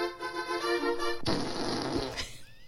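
A loud fart sound effect played by an Alexa smart speaker from the Big Fart skill, starting as a buzzy, tonal blat and breaking into a sputtering, raspy burst before trailing off, with no talking.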